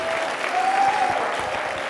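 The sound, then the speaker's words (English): A crowd applauds steadily for Jesus, dense overlapping clapping at an even level, with a faint sustained tone running beneath it for a moment. “Come on, you can clap for Jesus. Don't clap for me. Clap for Jesus.”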